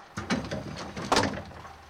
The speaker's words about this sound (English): The bus door closes and the bus drives off.